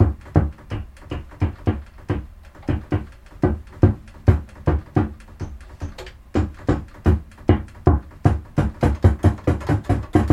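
Filtered white noise from a synth, chopped into short percussive bursts that pulse in a quick, steady rhythm, each hit with a thumpy low end and a hissy top, with no voices.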